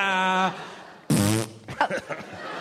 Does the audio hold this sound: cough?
no